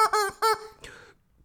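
chicken squawking

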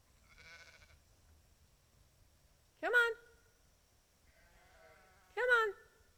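sheep bleating

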